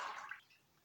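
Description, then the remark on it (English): A brief, soft rush of running water, like a tap pouring into a tub, loudest at first and then fading into a quiet, hissy trickle within a second. “I just had a short break there to fill up the water in the bath.”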